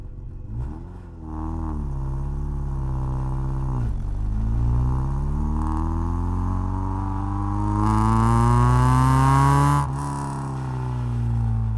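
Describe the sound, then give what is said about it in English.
A soft-top Mercedes convertible drives out of a compound with wheels squealing: the engine roars and accelerates hard, its pitch climbing steadily through two gear changes, with a harsh, gritty burst at the loudest point before settling into a steady drone. “As Abhinav drove out of the compound, wheels squealing,”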